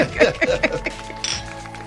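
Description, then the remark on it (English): Several bright glassy clinks of glasses ring out in quick succession in a toast, with a final sharper ting, as people talk and murmur underneath. “Cheers to that.”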